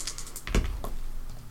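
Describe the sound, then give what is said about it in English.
Dice clatter against a table in a short burst of clicks, with one heavier knock in the middle and a lighter tap after it, with no talking. “Okay, these dice are bad luck now.”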